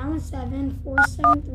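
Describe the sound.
Three short telephone keypad beeps, each a crisp dual-tone chirp, are dialed in quick succession as someone dials a mother's phone number, over a voice that keeps sounding underneath, with a low steady hum throughout.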